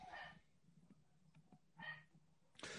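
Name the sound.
dogs barking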